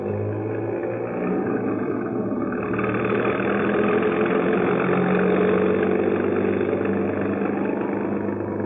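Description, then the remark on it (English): A bus engine runs steadily, a continuous low rumble with a droning hum that holds level for the whole stretch, no voices present, as the bus proceeds through stormy, inclement weather along Cleveland Avenue in St. Paul at night. “Then it proceeds through the stormy, inclement weather along Cleveland Avenue.”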